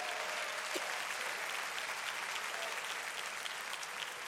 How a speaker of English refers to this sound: And you ought to shout on that. Clap your hands and give praise to him.